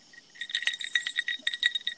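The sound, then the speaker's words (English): Ice cubes rattle and clink in a glass of Tito's on ice, shaken outdoors, in a quick, irregular flurry of bright, high-pitched taps, with no voices. “It's funny how we know just the shake of a glass with the other.”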